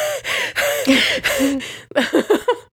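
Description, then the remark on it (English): A person makes exaggerated, theatrical gasps for breath, starting with long wheezy voiced inhales and ending in a quick run of four or five short, sharp panting gasps, fairly loud. “Cold is terrible things to my asthma, but it is okay. We make quite a heroic trio. Yeah, don't we? Big club. Like, gasping.”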